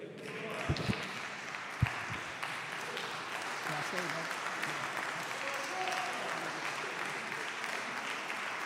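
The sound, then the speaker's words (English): Sustained applause from a crowd, a round of applause for Student Minister Abdul Muhammad after he delivered his talk; a steady dense patter of clapping that holds evenly throughout, with a couple of sharper thumps near the start. “Let us give a round of applause for Student Minister Abdul Muhammad.”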